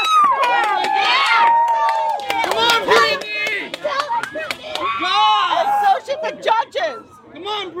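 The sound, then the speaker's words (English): A crowd of Free Britney supporters outside the courthouse screams and cheers nonstop while listening to Britney's testimony on one cell phone. Many high-pitched voices overlap in rising and falling yells, with scattered claps and sharp shouts cutting through the loud, steady din. “I'm outside the courthouse, screaming along with all the Free Britney supporters out here.”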